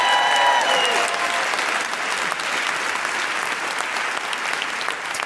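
An audience at an Amnesty comedy show in Manchester claps steadily for the evening's sign language interpreter, a dense wash of many hands at fairly high volume that holds for several seconds with little change, with a few whistle-like tones briefly at the start.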